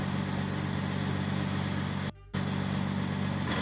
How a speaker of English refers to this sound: And there she goes. There she goes, being carried away in the dump truck. There you have it, ladies and gentlemen. Riding off down the road with the statue in the back of the dump truck.